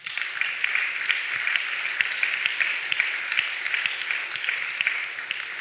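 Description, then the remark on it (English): A church audience claps steadily and enthusiastically to give God a hand, many overlapping hand claps forming a dense, continuous wash of applause with no voices standing out. “Your children is clapping.”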